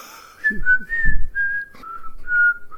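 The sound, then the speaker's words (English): A person whistles a short tune of several steady, sliding notes close to a microphone, with breathy low thumps from air hitting the mic between notes. “Whistling into the mic.”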